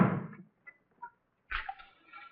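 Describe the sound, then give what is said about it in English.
A door shuts: a rustling burst, a couple of small latch-like clicks, then a dull low thump with a brief rattle as it closes. “Close that door before you open the curtain, will you?”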